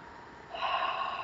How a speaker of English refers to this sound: So actually maybe we'll do that right now, because I think we could all take three deep breaths and just, and the other thing is feel yourself sitting here. So let's go ahead and do that.